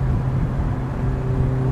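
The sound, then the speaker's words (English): A tiny red MG sports car's engine drones steadily as it drives off for home, a continuous low rumble with a faint whine, holding an even loudness throughout with no voices. “He flung the leaflet, his briefcase, and his suit coat into his tiny red MG sports car and left for home.”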